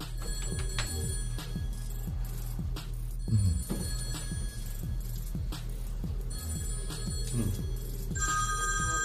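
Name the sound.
phone ringing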